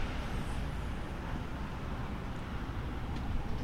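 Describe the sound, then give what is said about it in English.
Steady late-afternoon street traffic rumbles continuously in the background, a dense low roar getting busier as people get off work and head home, with no distinct passing vehicles standing out and no voices. “You can hear the traffic and stuff because it's a little later in the afternoon, and the different afternoon shifts are starting to, you know, people are starting to get off work and starting to head back”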